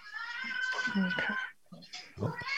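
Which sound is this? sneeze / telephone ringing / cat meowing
cat meowing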